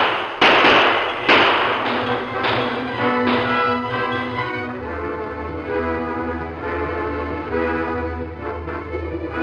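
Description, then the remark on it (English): Several sharp gunshots crack out in the first few seconds during a train holdup by masked men, spaced irregularly, over a steady droning, tonal background that carries on after the shooting stops. “Use your gun.”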